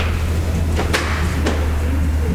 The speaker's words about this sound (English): What the fuck are we doing there? Are we deadbolting 15 doors? Like, what's happening?